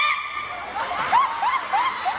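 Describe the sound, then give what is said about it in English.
A person imitates a chicken with a short run of about four rising, clucking squawks in a steady rhythm, fairly loud, over a faint background murmur. “So I was just saying, looking back, I could definitely be a chicken.”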